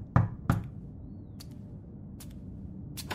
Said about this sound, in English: The next morning, he was awoken by a knocking at his door.